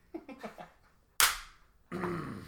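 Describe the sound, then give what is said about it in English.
A single sharp, loud 'chap slap' on the backside, like in football, rings out with a quick decay, framed by brief bursts of voices before and after. “Was that a chap slap? It was the chappest of slaps.”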